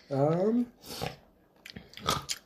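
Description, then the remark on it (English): A person chews food with a few wet, crunchy bursts spaced apart, preceded by a short voiced hum of satisfaction. “Guys, don't mind my chewing sounds.”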